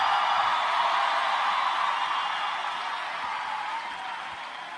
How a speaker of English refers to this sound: Listen, for my name, come on, clap them hands and scream hallelujah.